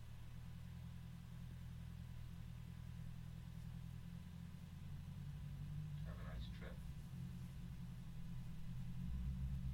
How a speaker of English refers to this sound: It's not the sound of the bus, by the way. If you hear that, it's the motorcycle. I don't know if y'all can hear that or not.